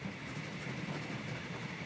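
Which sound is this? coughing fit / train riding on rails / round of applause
train riding on rails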